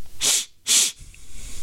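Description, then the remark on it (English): Two quick, sharp sniffs in a row from a man, each a loud breathy hiss through the nose, separated by a brief pause and followed by a low, faint rumble. “The sniffling.”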